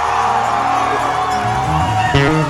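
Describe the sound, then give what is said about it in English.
A church audience shouts and cheers together after hearing a testimony about 10,000 Ghana cedis, in a loud, continuous roar of many voices, with a brief swell of louder whoops near the end. “Shouted when you heard the 10,000 Ghana testimony.”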